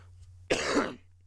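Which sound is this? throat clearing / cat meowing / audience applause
throat clearing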